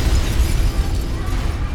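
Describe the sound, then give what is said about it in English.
A car bomb explosion fills the moment, a loud continuous roar with deep rumbling low end and a hiss of scattering debris, sustained for nearly two seconds with no talking; the blast shatters storefronts along Market Street. “The blast shattered storefronts all down Market Street and was felt for miles around.”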